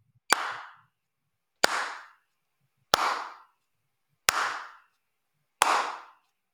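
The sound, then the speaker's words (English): Five sharp hand claps land at a steady, even pace about a second and a bit apart, clapped in time with metronome clicks, each crisp with a short ringing tail and quiet between them. “Can you hear the metronome? Honestly, it sounded like you turned it off for several of those beats.”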